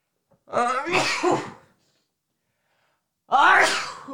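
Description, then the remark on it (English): Two loud sneezes about three seconds apart, the first with a breathy, wavering buildup before the burst, the second sharp and forceful, with silence in between. “I'm about to sneeze.”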